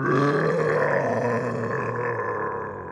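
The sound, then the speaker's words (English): A voice imitates the growl of Frank, an ogre: one long, loud, throaty roar with rough, harmonic rumble, sustained for about three seconds and fading slightly at the end, with no talking. “you recognize this growl, and you see...”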